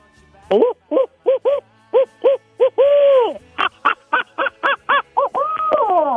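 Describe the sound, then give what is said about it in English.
A person imitates an owl call, as used when turkey hunting at the edge of a wood line, with a long series of short, rhythmic hoots broken by a couple of longer drawn-out calls, loud with no other sounds. “And oftentimes what you do when you walk into the edge of a wood line, instead of just go barging into the woods and scaring everything out of the trees, you hoot like an owl. All right, give me an owl call.”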